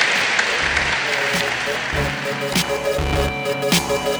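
An audience applauds steadily for several seconds, a dense wash of clapping that holds at a fairly loud level while soft musical tones begin to sound beneath it.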